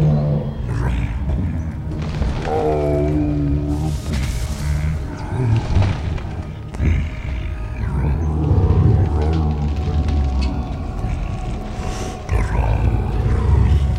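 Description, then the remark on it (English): Treebeard hums to himself in Fangorn, a deep, thoughtful humming that drones on steadily for the whole stretch, low and resonant with a rough, growl-like texture and slowly shifting pitch and rhythm. “He hummed to himself deeply and thoughtfully.”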